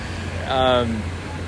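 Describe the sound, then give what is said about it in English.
Steady low rumble of road traffic, with an engine droning underneath and a brief, louder tonal swell passing through in the middle of the short clip; people honking. “People honking. Like, anyway, if hold on a second. Hold. This guy's gonna hit me on the car.”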